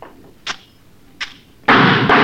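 Two sharp gunshots crack out less than a second apart, each with a short ringing tail, followed by a sudden, loud, sustained roar of noise. No voices are heard.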